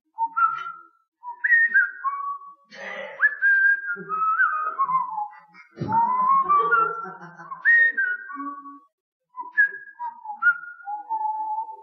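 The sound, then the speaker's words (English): A single person whistles the theme tune of the classic film The Great Escape, a bright, clear melody in short phrases with quick pitch slides, brief pauses between lines, and no talking. “Does anyone know what classic movie that is a theme tune for? Great Escape?”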